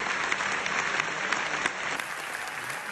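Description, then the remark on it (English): Dense, sustained applause from a large crowd during a six-minute standing ovation for Brendan Fraser at the premiere of The Whale, a continuous wash of many hands clapping at once with scattered sharper claps, steady and loud throughout with no talking. “And he got a 6-minute standing ovation.”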